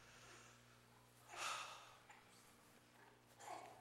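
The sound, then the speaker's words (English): A deep, breathy inhale swells up, followed after a pause by a softer exhale, both quiet over a low steady hum, with no talking. “Well, let's take a breath now. Okay, let's do it together.”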